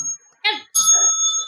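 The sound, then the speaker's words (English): A small bell is struck twice in quick succession, its bright, clear tone ringing on and sustaining, with brief bits of voice mixed in. “Get to my bell on that.”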